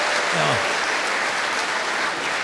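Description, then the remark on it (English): Steady, dense applause from an audience at a talk, a broad wash of many hands clapping at once that holds at an even loud level throughout, with no voices standing out. “She deserves the applause, not me, but imagine if she had heard that talk in high school.”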